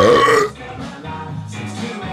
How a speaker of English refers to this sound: but I'm burping up a storm. I apologize, folks.